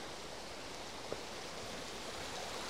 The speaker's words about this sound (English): Oh dear, we're coming up to a stream here.